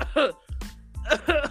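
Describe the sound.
A couple of short, abrupt coughs burst out, mixed in with brief voiced vocal sounds, all within a second and a half.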